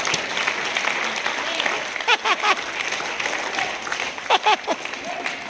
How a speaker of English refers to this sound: Will you stand with me? And let's do what the psalm said. Clap your hands, O ye people, and shout unto God with the voice of triumph.